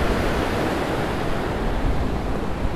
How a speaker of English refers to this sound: So she kept quite a high route, which meant she then got to one bit where the water was just flowing over one large rock and then hitting another rock.